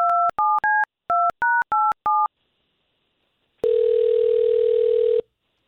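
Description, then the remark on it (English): A phone number is dialed as seven quick touch-tone beeps in a brisk run, then after a short pause a single loud, buzzy ringing tone sounds for over a second. “Calling Katie right now.”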